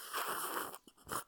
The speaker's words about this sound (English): That might have been the most pleasant slurp you've done. It's a good one.